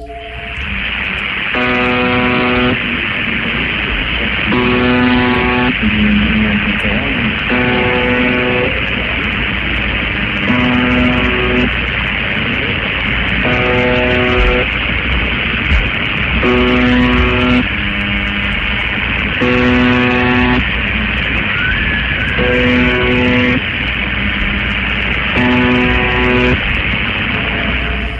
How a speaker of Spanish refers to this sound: Pues mire, yo, hay una interferencia de fondo. Sí. Y hay un momento en que hay un grito desgarrador. Sí. El grito, sí, de una mujer.